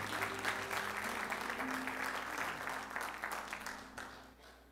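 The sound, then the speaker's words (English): A church audience at Gap Hill claps hands in praise of Jesus, a dense, steady wash of applause from many people that holds strong for several seconds before tapering off near the end. “Can we give Jesus a hand clap of praise today in the house?”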